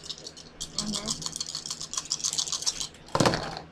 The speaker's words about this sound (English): So my knowledge is 5, so I would roll 5 dice, which are these, and I got to beat a 4, right?